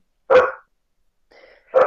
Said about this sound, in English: My dog is now going off. Hold on a second.